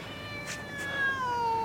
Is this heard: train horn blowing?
no